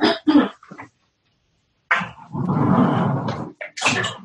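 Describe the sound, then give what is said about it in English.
A dog behind a couch gives a few short, sharp barks, falls quiet for a moment, then lets out a longer, rough whimpering whine broken by more brief yelps. “Is there a dog behind the couch? Oh my god, there's a dog behind the couch.”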